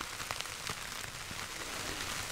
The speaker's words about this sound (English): Yeah, that's good. It does sound like rain a lot.